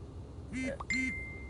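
A short electronic two-tone chime rings out from a phone, two quick bright blips over a steady low rumble of road noise inside a moving car.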